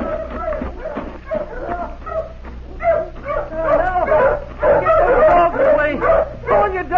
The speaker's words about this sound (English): Now, where are the hounds? Listen. See, they found something over there in that thicket. Help! Help! What's that? Hold off the hounds!